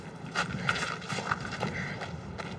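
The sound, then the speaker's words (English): A horse-drawn carriage: horse hooves clip-clop in an uneven, steady rhythm, sharp knocks rising over a low rolling rumble like carriage wheels on pavement, with no voices present. “I'll hail you a carriage.”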